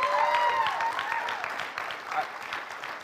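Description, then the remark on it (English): An audience claps together in a dense, steady patter of applause as a clap of praise to Jesus, with a few high whoops or whistles riding over it at first before the clapping thins slightly toward the end. “So give Jesus a clap of praise.”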